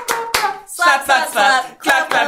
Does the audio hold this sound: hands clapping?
yes